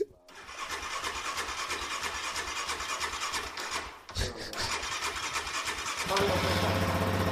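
An engine cranks with a raspy, rhythmic churn for several seconds, briefly pauses, then catches and settles into a steady, fairly subdued idle with a low, quiet exhaust rumble.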